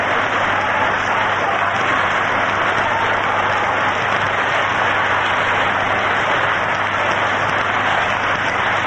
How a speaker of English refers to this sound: crowd starting to move toward the exit, a whole lot of it.